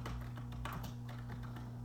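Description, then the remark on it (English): Quick, irregular keyboard typing clicks in a steady run, fairly quiet, over a constant low electrical hum with no one talking. “We're all like clicky, clicky, click.”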